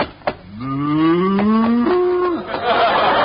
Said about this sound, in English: Wait a minute, mister. This is a cow. You got good eyes, lady. We give you the bucket free. Gosh, a real cow.